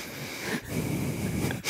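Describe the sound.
Loud, wheezy breathing through the nose, with two long noisy breaths separated by a brief pause. No one speaks.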